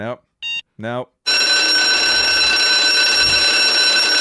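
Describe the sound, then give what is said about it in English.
A few short tonal blips give way to a loud, steady fire alarm sound effect: a continuous, shrill electronic ringing that holds unbroken for about three seconds. “Nope. Studio's on fire.”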